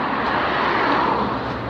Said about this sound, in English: So, if you're feeling like you have a mental health problem, and you can hear me over the traffic as I walk along, please seek help.